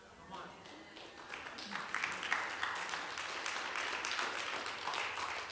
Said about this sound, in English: Some of y'all with them half-hearted claps.